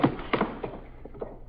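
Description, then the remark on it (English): A heavy case is set down with a dull thud as cases are moved around to sit on, followed by a few softer knocks and shuffling bumps as it settles, fairly quiet. “We'll move a couple of these cases around so we can sit on them.”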